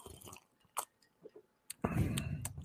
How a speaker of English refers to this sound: And I'm putting it over ice. And it's got, hang on, let me give it an honest review in real time here. Let me just get a sip.